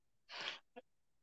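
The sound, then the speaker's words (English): A single sneeze: a loud, breathy burst of about a third of a second, followed by a brief voiced catch, then quiet. “Bless you, brother.”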